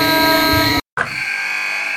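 A loud, harsh arena buzzer blares for nearly a second, cuts out briefly, then sounds again in a long sustained drone, like the horn ending a basketball game.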